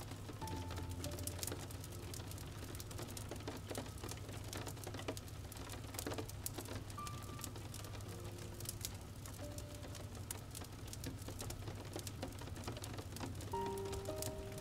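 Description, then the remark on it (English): Steady light drizzle patters against a window at night, a dense, continuous crackle of small drops with a soft low hum underneath and no talking. “Slowly walking over to the window, you peer outside, past the drizzle tracks that run down the window.”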